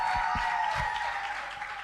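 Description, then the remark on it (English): An audience at a morning gathering claps to celebrate a speaker as she comes up, a dense wash of applause that holds for the whole moment, with a few low thumps near the start and no voices standing out. “Come on, keep on clapping.”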